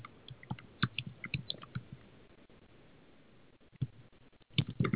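Irregular bursts of light clicking, like typing on a computer keyboard close by, with a brief lull in the middle before the rapid taps pick up again. No one speaks.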